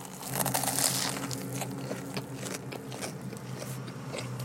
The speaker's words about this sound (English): It's crunchy. There's a lot of crunch to it. The bread is toasted / fried. There is chips inside, which are also crunchy.